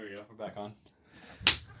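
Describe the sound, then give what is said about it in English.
A voice talks briefly, then after a short pause comes one sharp, loud smack of a hand slapping a piece of equipment to get it working again. “There we go. We're back on. You got to slap.”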